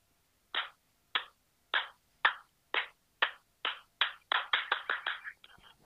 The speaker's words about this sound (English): Well, you have to deal with that clap, don't you? It's not me that's editing it.